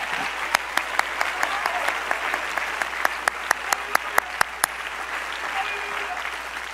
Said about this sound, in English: Somebody clap your hands for just a moment.